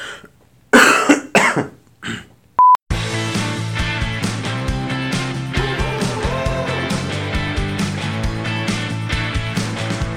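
A few rough coughs and throat-clearing bursts, followed by a short electronic beep and then steady music that plays out to the end.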